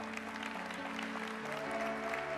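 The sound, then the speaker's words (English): An audience claps steadily and densely for people coming forward to be prayed for, a continuous wash of applause with sustained organ-like tones holding underneath. “Give them a big hand clap as they come right now.”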